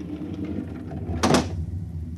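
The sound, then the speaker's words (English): A protective shield over a spaceport is slid aside: a brief, bright sliding whoosh lasting about a quarter second rises over a steady low mechanical hum, then fades back into the hum. “On the following morning, when Kreifer went to the conditioning room as prescribed by the buzzer, Reichard drew Aelin over to the spaceport and slid aside the protective shield.”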